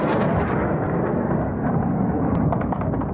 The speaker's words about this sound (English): Gunfire and explosions continue to be heard across the city, and fighter jets frequently rip through the sky above.